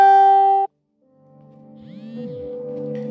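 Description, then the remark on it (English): A phone notification chime sounds once, a loud, steady electronic tone lasting just over half a second, then cuts off abruptly into silence before quieter tonal background sounds gradually swell in. “I didn't feel it was important to, you know, vibrate this because it's only 5:08, but, you know, that was a notification.”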